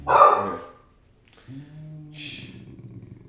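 A dog gives a sharp, loud bark at the start, followed by a brief pause, then a low whine and a second, shorter bark.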